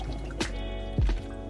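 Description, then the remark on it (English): Water splashes into a glass in two short bursts, a brief gush and then a fuller, gurgling pour, over a quiet background with no talking. “I'm gonna have a little water, sorry about that.”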